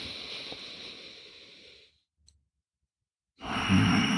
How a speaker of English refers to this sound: This is what I get, is breathing, this loud breathing.